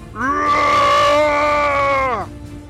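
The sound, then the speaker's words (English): A voice lets out a single loud, drawn-out battle cry as a shot slams into a creature, lasting about two seconds, its pitch swooping up, holding steady, then sliding down as it cuts off. “You hear the shot and it slams into the creature, and as you see it connect, you're in a fit of excitement, you let out this massive battle cry.”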